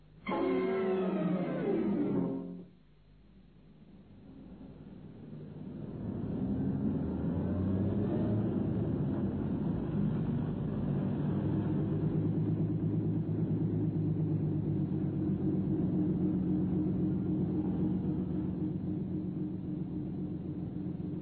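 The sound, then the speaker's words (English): After a short tonal burst fades out, a dense, steady rumble of 1932 city traffic held in a block on Tottenham Court Road swells in, motor car engines droning and idling continuously, loud and unbroken with no voices. “Jimmy and Naomi Clinton sat impatiently in their motor car, a long low Invicta. They were late for lunch. The block of traffic”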